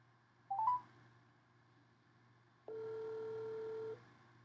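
A brief warbling electronic chirp, then after a pause a steady, moderately loud ringback tone holds for over a second as an outgoing call from a phone to a local business connects, over a low background hum.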